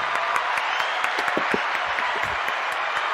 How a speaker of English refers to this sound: I had the applause volume was down for some reason. Let's get it up there. Let's go. Let's do it.